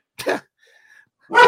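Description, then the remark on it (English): A dog barks twice, short and sharp, with a brief pause between the barks and a faint thin whine in the gap. No one speaks. “The dog got riled up.”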